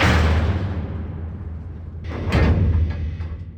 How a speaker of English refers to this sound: Mercy hits the button for the emergency seal, and the hatch slams closed, cutting Tras in half.